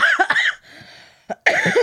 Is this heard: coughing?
yes